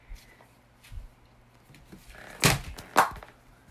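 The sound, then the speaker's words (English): A door is opened with two solid clunks about half a second apart, probably the latch and handle, after a few soft knocks and a low background hum. “Okay, I'll just open the door.”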